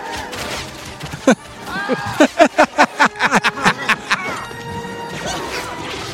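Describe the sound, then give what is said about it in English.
A rapid volley of roughly a dozen sharp, loud explosive bursts, each trailing off with a falling tone, fired in quick succession over a busy battle-like background. “Where are the explosions coming from if they're shooting arrows?”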